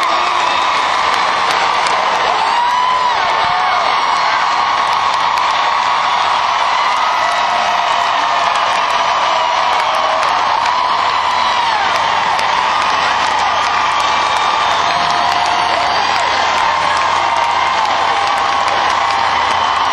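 A huge stadium concert crowd cheers and screams without pause for the singer on stage, a dense, loud roar of shrill whoops and yells sustained for the whole stretch, with no music and no single voice standing out.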